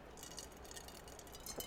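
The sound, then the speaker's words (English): A quiet sip of champagne from a glass, soft slurping and faint fizzing over a low hiss, ending with a small sharp clink of glass. No one speaks. “Champagne sip.”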